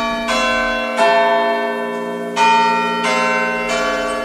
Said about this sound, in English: This week on the programme, we discussed the church bells in Ashwell in Hertfordshire. Some people have complained about the noise, and they could be silenced forever.